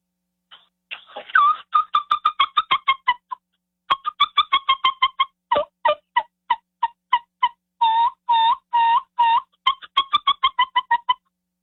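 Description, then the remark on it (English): A brand-new turkey mouth call imitating turkey peeps and purrs: a long run of quick, high, evenly spaced peeps and clucks with a few drawn-out purring notes mixed in, fairly loud, with no talking. “You're telling me they don't hear the peeps and the purrs and stuff like that.”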